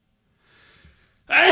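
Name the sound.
sneeze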